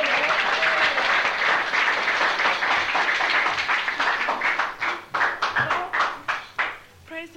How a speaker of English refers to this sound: Give them a clap, then.